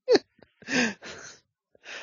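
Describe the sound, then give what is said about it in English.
A sneeze: a sharp, voiced burst, followed by a few breathy, hissing exhales and sniffs, with no talking. “Oh, God bless you.”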